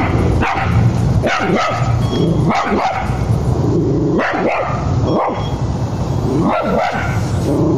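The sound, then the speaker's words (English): A dog behind the fence of a gated driveway barks repeatedly and loudly as a mailman drops a package over the fence, short sharp barks in uneven bursts over a steady background noise, with no one talking. “So here comes the package over the fence. And the dog is kind of dumb.”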